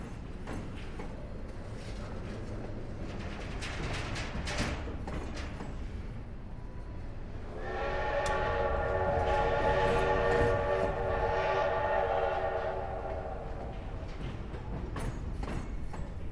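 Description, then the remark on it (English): A train rumbles steadily as it slows and passes through the town of Fenville without stopping, and a long, loud horn blast sounds midway through, holding for several seconds before fading back into the low rolling rail noise. “Did you hear the train coming close to Fenville? It won't stop. It'll just slow down and pass through.”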